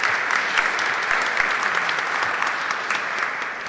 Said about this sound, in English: I feel like we need to give Lily a round of applause for that reading this morning.